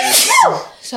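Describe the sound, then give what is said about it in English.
A single sharp sneeze bursts out, a quick noisy blast with a rising vocal edge, followed by a few brief spoken words. “Bless you.”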